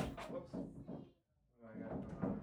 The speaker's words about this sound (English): trying to operate a closet door.